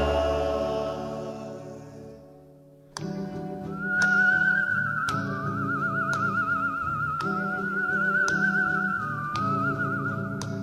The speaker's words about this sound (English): The whistling, it's almost kind of an eerie sound. It's a lot of control in that whistling. Comes in toward the end also again.